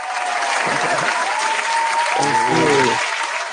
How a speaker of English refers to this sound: Ladies and gentlemen, I want y'all to give a nice warm round of applause for